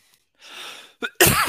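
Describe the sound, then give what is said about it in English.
A soft, breathy inhale, a brief catch, then a loud, harsh cough burst right up against the microphone, sharp enough to feel like it hits the ear directly. “It's clearly a cough right in your fucking ear to blow out your eardrums.”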